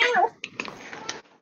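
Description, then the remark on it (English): A single short, whiny meow from a cat named Pixel, fairly loud, with a child-like complaining tone, followed by a second of soft rustling and scuffling. “I just like how she sounds like an angry child.”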